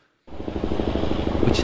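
A person vocally imitates a heavy twin-rotor Chinook military helicopter, starting abruptly with a loud, steady, rhythmic low thudding and buzzing, sustained for over a second.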